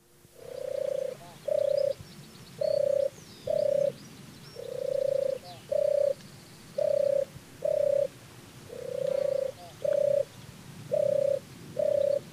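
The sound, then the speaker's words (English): A turtle dove's deep, purring tur-tur mating song repeats steadily, about a dozen short vibrating notes often in pairs, clear, with faint birdsong in the background. “It's announced by its deep, vibrating tur tur mating song, which is actually where it receives the name turtle dove.”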